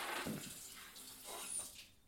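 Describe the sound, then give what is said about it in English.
Liquor being poured down a sink drain: a short, soft rush of splashing liquid with a hissy gurgle, fairly quiet, lasting about two seconds with no voices. “Did you just pour all the booze down the drain?”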